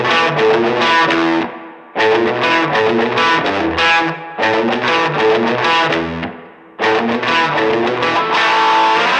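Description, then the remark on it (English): A loud, heavily distorted Fender electric guitar plays thick, sustained chords in bursts, with brief drop-outs around two, four and seven seconds before crashing back in. No voices are heard. “That's a Fender, my friend.”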